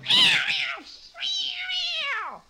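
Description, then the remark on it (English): A cat meows twice: a short, rough cry, then a longer, drawn-out meow that slides down in pitch at the end. No one talks. “So you want to go out and see your boyfriend, do you, kitty?”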